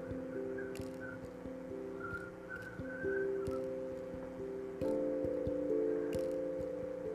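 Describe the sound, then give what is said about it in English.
A faint, wavering high whistle drifts in short phrases over a steady, droning hum of low tones, with a few soft clicks scattered throughout; no one speaks. “You guys hear that whistling?”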